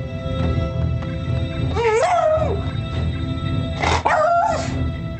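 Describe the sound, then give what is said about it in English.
A beagle lets out two drawn-out, warbling howls, the pitch sliding up and down in a baying "roo," over a steady low background hum. “and, you know, I'm always a sucker for that beagle roo, so.”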